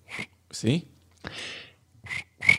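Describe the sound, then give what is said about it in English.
A person mimics a cricket with a handful of short, raspy, breathy chirps, spaced irregularly, each a quick scratchy squeak rather than a clean insect trill. “You know, not bad, but it sounds like that cricket smokes.”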